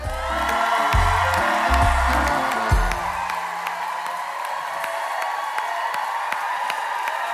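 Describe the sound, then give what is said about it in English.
A crowd bursts into steady, dense applause with cheering and whoops, the clapping sustained for the whole stretch while low music plays underneath for the first few seconds before fading out. “can you give a rapturous applause”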